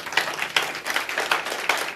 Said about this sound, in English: Oh, give him a clap for that.